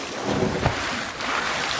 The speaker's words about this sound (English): You got to splash us out. You got to splash in and splash out. That's what I think. Splash in and splash out.